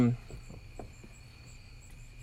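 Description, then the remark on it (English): Crickets chirp steadily in the background, a thin, continuous high-pitched trill at moderate volume, with a brief bit of voice at the very start and low room rumble underneath. “Sorry for the crickets.”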